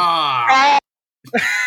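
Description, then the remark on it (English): A loud, drawn-out vocal scream with a strained, harmonic wail, breaking off for a moment before a second rising cry. No claps stand out. “That was a scream and a few claps, so I do apologise.”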